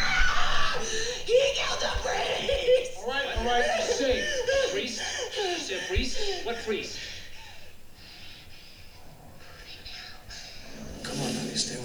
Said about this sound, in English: A good scream, right? Good for her.